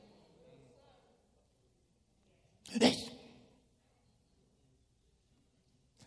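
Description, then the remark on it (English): A person imitates a single sharp sneeze, that of a man who sneezed while making a sandwich in a restaurant, a loud burst that rises and trails off quickly, surrounded by quiet with faint murmuring beforehand. “I didn't really like what I saw, but you know, I didn't really like it because a gentleman was making a sandwich, and the heat was going, and then I saw him sneeze.”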